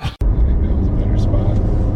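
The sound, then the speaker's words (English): Steady, loud low rumble of road noise inside a moving car, a continuous droning roar with a brief dropout near the start and muffled voices beneath it. “You weren't riding the same car I was riding in, I guess.”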